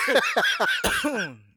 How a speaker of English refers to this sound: Excuse the coughing. That's from the Brass Knuckles.